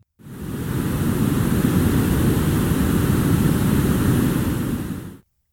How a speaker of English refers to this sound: But there's one other, and brown noise, it has even fewer high frequencies. It's more of just a low hum, and here's what that sounds like.